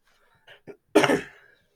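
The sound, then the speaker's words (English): Two small throaty bursts lead into one loud, harsh cough, with no talking around it. “was coughing over it”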